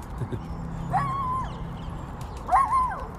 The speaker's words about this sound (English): He's having a bark. It's a little Jack Russell.